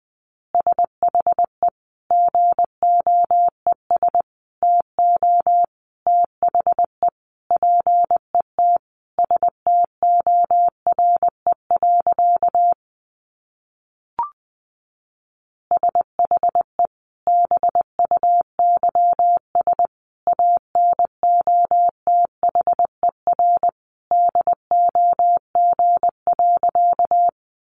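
Morse code at about 20 words per minute: a single steady mid-pitched tone keyed in rapid dots and dashes, with a brief pause near the middle before the sending resumes. No voices.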